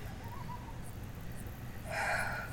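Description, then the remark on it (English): Over a steady low background hum, a soft bird call rises at the end: a brief, breathy, hooting cry. No one speaks. “Check, make sure the bird's inside.”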